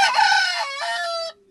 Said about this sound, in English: The Rooster Crows. What that means it's 7:30.